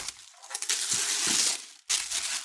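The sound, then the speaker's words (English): Tissue paper wrapped around the box holding a toy figure crinkles and rustles as it is unwrapped, a steady, bright papery crackle that swells in the middle, pauses for a moment near the end, then resumes. No one speaks. “But the box itself that the figure is in is wrapped in tissue paper, so that's nice.”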